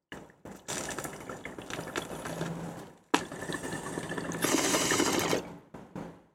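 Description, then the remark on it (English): Water in a bong, filled with more water and with a somewhat dirty bowl piece, bubbles in a rapid, steady gurgle over two long pulls separated by a brief break. The second pull grows louder and more hissy before cutting off. No one speaks. “Bowl piece is a bit dirty, but it's still hits.”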